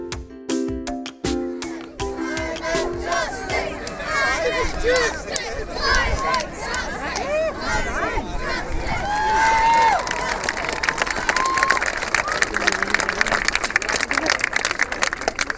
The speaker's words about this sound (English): Wow. What a crowd. Give yourself a huge round of applause. Fantastic. This is probably the biggest demonstration we've seen in St Andrews for 20, 30, 40 years, and it's all down to you, so thank you.